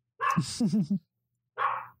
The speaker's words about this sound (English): I'm just waiting for the dogs to stop barking.